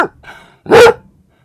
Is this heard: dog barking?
yes